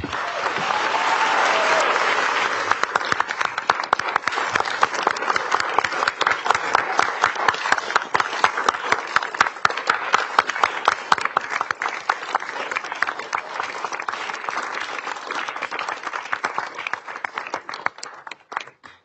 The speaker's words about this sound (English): She always gets the loudest applause. I told her that at least there would be one person in the chamber who would be cheering for me.